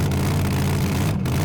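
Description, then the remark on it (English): The engine of Giganticus, a beloved first motorcycle, idles with a steady, loud, low rumble and a constant throbbing drone, running continuously with no voices. “My late, great, beloved first motorcycle?”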